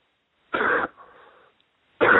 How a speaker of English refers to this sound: Just take a deep cough out of your stomach.